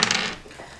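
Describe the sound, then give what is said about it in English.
A quick, bright clatter of two challenge dice tumbling across a hard surface, loudest at the start and settling within a second, with no talking. “Oh, it roll challenge dice too. Oh, both of them. 2 challenge dice as well.”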